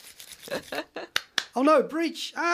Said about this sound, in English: That's the sound of rubber gloves. Clapping together.